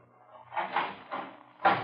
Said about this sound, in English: Why, a vault? No, Kelton, not exactly. It's a steel door set by a combination.